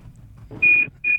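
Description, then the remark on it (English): A smoke alarm beeps twice, loud, high-pitched electronic tones, the second cut off at the end, over a low background rumble. “There's a fire in his house.”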